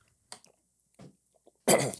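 A person coughs and sputters after swallowing the wrong way, a few short choking bursts followed by one loud, harsh cough, with no talking.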